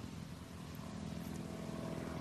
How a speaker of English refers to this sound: Another, there's a plane flying overhead.